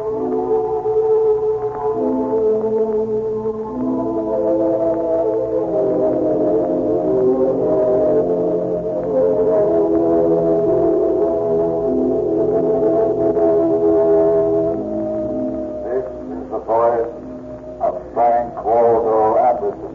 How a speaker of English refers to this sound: the mysteries of the Shrine of Buddha as the Burmese temple bell rings.